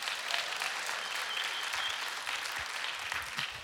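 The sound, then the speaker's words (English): A crowd claps steadily for a few seconds while the speaker drinks water before reading scripture, a dense, sustained patter of many hands with no voices on top, fairly even in loudness throughout. “I'm sure you had your caffeine, but while I drink water, you clap because I'm about to read a whole bunch of scripture to you.”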